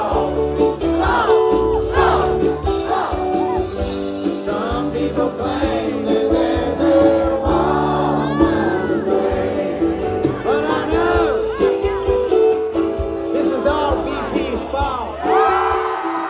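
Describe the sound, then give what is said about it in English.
A huge crowd at a surprise concert sings along together as the performer plays his signature anthem, voices blending into one loud, continuous swell over the live music, with scattered whoops and cheers rising out of the mass throughout. “And when he played his signature anthem, everybody sang along in a giant group therapy session.”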